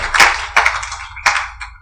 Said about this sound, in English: I think that deserves another round of applause and appreciation to God.